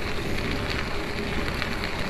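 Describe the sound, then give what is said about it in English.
Light rain patters in a steady, even hiss of fine droplets, constant throughout with no pauses and no voices. “It's not raining hard, but it's raining a little.”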